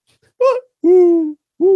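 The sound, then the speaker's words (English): A mourning dove coos: a short upward-swooping first note, then a long, steady, low hooting coo and the start of another, soft and mellow, with no talking. “You know, you hear that call. Right. And, Yeah. Morning doves.”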